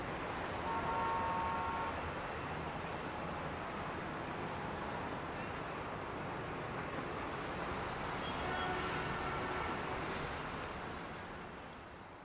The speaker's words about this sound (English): Okay, so the sounds of the mall are gone away. I can kind of hear traffic in the distance.